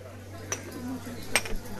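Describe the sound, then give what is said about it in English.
Two sharp clinks of china cups ring out over a low, steady hum and murmur at the busy bar of an old-school coffee house in Rome, with indistinct chatter; baristas hustle to fill orders while it rains outside. “I join the other refugees from the rain at the busy bar. Baristas hustle to fill orders.”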